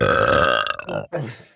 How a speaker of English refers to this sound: While they're all talking, Bambi's going to burp completely by accident.